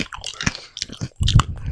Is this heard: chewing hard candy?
yes